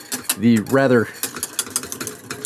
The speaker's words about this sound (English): The really nice thing about the immersion blender with this is that it really speeds up the process. Sometimes it can take a while for the last little chunks of cheese to fully melt into the sauce.